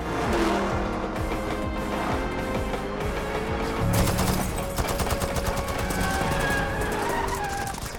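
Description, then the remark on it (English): Rapid bursts of gunfire with bullets striking metal and a suit that absorbs them, set against a roaring truck engine and skidding tires, loud and continuous throughout with no one speaking. “You've been taking bullets, charging it up with kinetic energy.”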